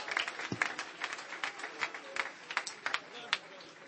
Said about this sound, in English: Holy Ghost is going to move tonight. Let's lift our voice and clap our hands to the Lord tonight.